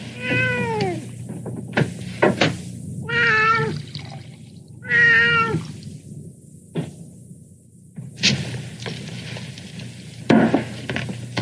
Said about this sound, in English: Hey, kitty. You hungry?